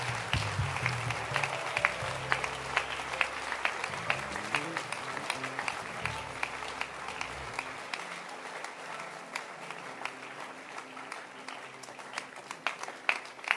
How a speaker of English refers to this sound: Clap your hands for Jesus. Put that. And keep clapping your hands.